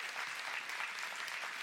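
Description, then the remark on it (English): A crowd claps steadily for a couple's 50 years of marriage, a dense, even wash of many hands with no pauses, holding a constant loudness throughout without any voices standing out. “Yeah, I think that deserves applause, right?”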